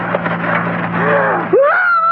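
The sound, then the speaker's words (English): After a steady rumbling, noisy background, a person crouched by a road jumps out as a car passes beside them and lets out a loud, high, rising scream near the end that holds its pitch, piercing. “When the car was beside me, I would jump out and scream.”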